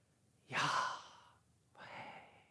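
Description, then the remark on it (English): A slow breath in and out: a louder airy inhale followed by a softer, breathy exhale, with no talking. “Some interpret that to almost even be the sound of breathing.”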